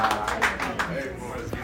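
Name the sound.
audience applause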